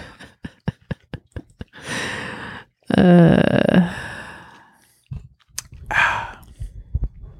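A series of small clicks and swallowing sounds from sipping Sprite Zero, a caffeine-free lemon-lime soda, followed by a loud, satisfied exhaled gasp and a softer breathy sigh, with no talking.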